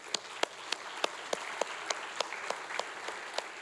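A church audience claps together in a steady, even rhythm, sharp claps landing about three times a second over a softer wash of scattered applause, with no talking.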